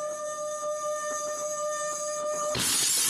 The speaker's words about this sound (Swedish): Sätter glasen nära varandra och sen gnider jag på det andra glaset.